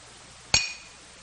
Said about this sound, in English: The hammer, hitting those nails, driving them into Jesus' hands and feet. It was the Roman soldiers that swung that hammer.